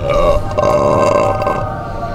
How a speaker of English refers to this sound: Number 2, was that a belch?